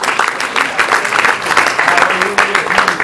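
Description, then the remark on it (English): A large crowd claps steadily and densely in praise of God, with scattered voices calling out and cheering over the applause, sustained and fairly loud throughout. “Now, if you believe it, clap your hands, lift your voice, and let's praise him before we sit down.”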